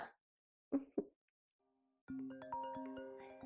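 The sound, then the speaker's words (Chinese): Two short thuds, then a phone starts ringing with a call from Ping'er: a loud electronic ringtone melody of bright, stepped synthetic notes that keeps playing to the end, with no voices. “是平儿的电话。”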